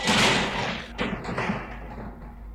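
A heavy metal cell door, torn from its hinges, crashes down onto a hard rock floor: a loud opening impact, then a second clanging hit with a brief metallic scrape, and a rumbling tail fading out.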